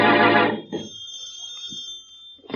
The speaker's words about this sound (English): As we return to our story, Shorty has been released by the police, and in the Brumley home, the phone rings.